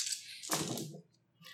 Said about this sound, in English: Rolling 11 dice. Getting 1, 2, 3 successes as well.